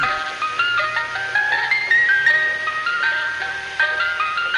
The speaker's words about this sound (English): if we can get some music, I'd like an ice cream truck.